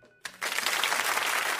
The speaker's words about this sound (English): I'm not proud of that applause.